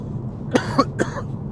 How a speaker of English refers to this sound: I think I'm getting this coughing because I'm talking too much. I don't often talk for 20, 25 minutes.